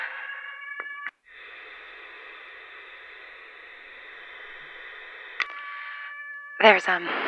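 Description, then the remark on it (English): A tornado warning siren holds a steady, unwavering tone over a bed of hiss. A brief break interrupts it early on, and a rough burst of sound cuts in near the end. “When it first sounded, I thought it was an attack siren, like the one that they used to play for school drills, when we'd have to hide under our desks and clutch onto the table legs”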